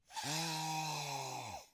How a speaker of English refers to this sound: So, in this new recording setup, I can really indulge in some of the sounds involved in the wine tasting. For example, the sniff.